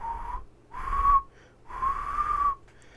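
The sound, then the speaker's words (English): A person whistles three sustained, slightly wavering notes in a row, separated by short pauses, imitating a whistling heard one Thursday night. Moderately loud, with no talking. “And I hear this whistling that.”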